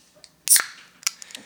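A beer can cracks open with a sharp, bright pop and a short burst of fizzing hiss, followed by a few small metallic clicks. No one speaks.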